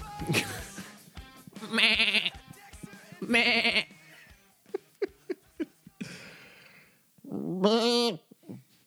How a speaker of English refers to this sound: Have you seen those goat videos where the goats are screaming? Oh, no. I've seen the Doritos commercial. There's goat videos on YouTube where the goats are screaming.